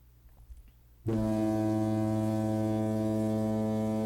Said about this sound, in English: That's right, folks. You heard the big dramatic boat fog horn. That means we are out of mailbag questions.